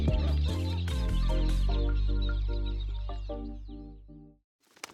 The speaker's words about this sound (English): Gobble, gobble, gobble.